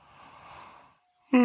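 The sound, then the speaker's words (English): A single drawn-out, breathy yawn, swelling and then fading over about a second, before a voice abruptly starts up loudly. “Big shocking. Yawns.”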